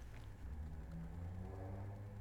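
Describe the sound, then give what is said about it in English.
A car passes outside, heard faintly as a low engine rumble with a steady hum that holds for a couple of seconds amid otherwise quiet surroundings. “Hear that car?”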